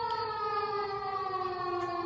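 A loud, steady alarm siren wails with a sustained, harmonically rich tone that slowly slides downward in pitch, continuous throughout with no voices.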